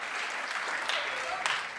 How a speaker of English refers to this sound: Come and join me. Round of applause to my competitors.